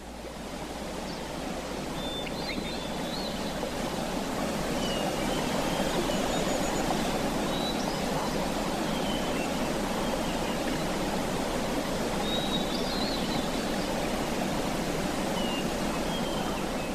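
Continuous water washing and lapping at a giant mountain lake, a steady, even rush with no pauses, while faint high bird chirps come and go in the background. No one speaks.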